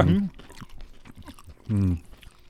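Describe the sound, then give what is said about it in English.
Crunchy chewing of fried pickles, a quick run of crisp crackles and bites right on the mic, bracketed by two short voiced murmurs. “Well, it's crunchy. It's a lot of crunch on the mic.”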